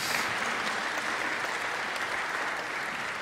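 A steady round of applause from a crowd, dense and continuous clapping that holds an even, fairly loud level throughout with no voices standing out.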